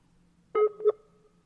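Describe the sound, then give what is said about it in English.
Two short electronic telephone tones in quick succession, keypad dialing beeps as a phone number is dialed for a phone call, clear and steady over a faint low hum, with no voices. “Quick phone call. Whoa, what do you mean the number is not available? Have I dialed that wrong?”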